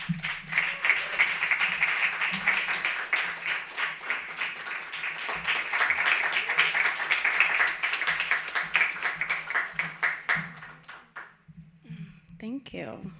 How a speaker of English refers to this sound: Love the applause. It's so sweet.